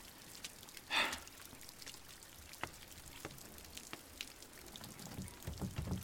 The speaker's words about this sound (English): Okay, well, I don't think we're breaking into the Pentagon, and don't talk about the Ring when it's outside and we're dark and it's raining and he probably has a well.